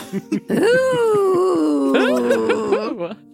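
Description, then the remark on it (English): A voice imitates a roller coaster with one long, sustained wailing tone that swoops up, glides slowly downward, then lifts in two brief bumps before cutting off. A few short vocal sounds come first. “It's more of a motorcycle than a roller coaster, but yeah, I like it.”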